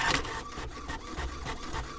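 A printer runs steadily, its mechanism whirring with a regular pulsing rhythm of feed strokes, loud and continuous with no voices.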